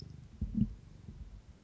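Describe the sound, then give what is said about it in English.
A male cat purrs close to the microphone while rubbing against a person's leg, a low, steady rumbling with a few soft clicks and bumps as its tail smacks against the mic, and no voices. “You're purring, but you're not saying anything.”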